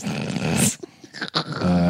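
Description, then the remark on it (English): A loud, low, buzzy fart, recorded and emailed in by a listener, rumbles for most of a second, followed by a brief lull with small sputters, then another steady low blat begins at the end. “I'm not sure what's more bold, the fart or that you would record it and then email it to us.”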